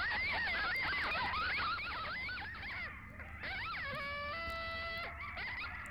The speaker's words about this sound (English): Coyotes. These are some crazy ass coyotes.